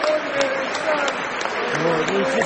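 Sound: stadium applause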